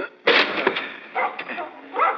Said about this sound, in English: I think we better force the door. Come on, Potters, help me. Yes, sir. We'll use this heavy chair. Steady now. One and two and...